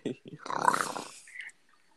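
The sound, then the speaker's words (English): A person imitates a growl with a rough, rattling voice, moderately loud, lasting about a second after a couple of short vocal sounds. “Or do I have to do the growl?”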